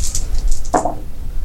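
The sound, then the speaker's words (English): Five dice rattle briefly in a hand, then land with one sharp clatter and a short ringing tap before fading into low background hum. No one speaks. “So you pick up 5 dice, you spend 1 point, then you pick up 5 dice, and you need 8s.”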